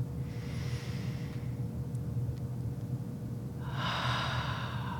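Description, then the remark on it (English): A slow, deep breath drawn in during a guided breathing meditation, then a pause and a long, airy exhale, over a low steady background rumble. “So we're just going to pause here and just take a few deep breaths.”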